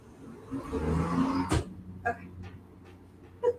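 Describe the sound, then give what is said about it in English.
A lawn mower mowing the lawn out front drones steadily at a low pitch, louder in the first half and then settling into a softer hum, with a sharp bump and a few brief knocks over it. “Had my door open and clearly they wanted to start mowing the lawn out front.”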